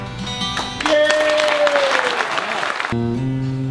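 A short, loud burst of crowd applause and cheering at an open mic, with a long whistle-like cry gliding down through it, lasting about two seconds before cutting off into a steady tonal background.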